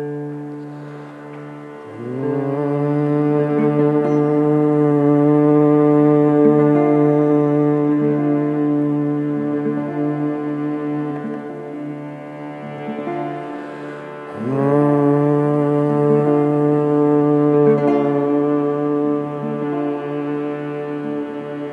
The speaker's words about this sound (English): And now we're going to empower this imagery by a little chanting of the mantra Om. So begin just by humming that single note on your exhale.